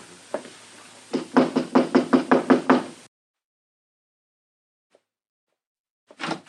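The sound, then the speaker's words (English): A rapid run of about ten sharp, loud knocks on a wooden room door, number 9, followed by silence and then a brief rustle or movement at the end. “Knock.”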